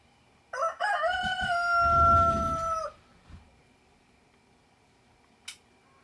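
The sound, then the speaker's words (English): A rooster crows once, loud, a long drawn-out cock-a-doodle-doo lasting over two seconds, followed by a brief click. “Go on, I'll wait. Come on, chicken.”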